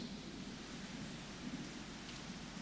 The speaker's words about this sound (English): The rain comes with freshness and what? Calmness.